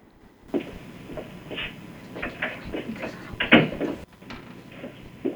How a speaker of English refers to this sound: Let me close the door to my office, though.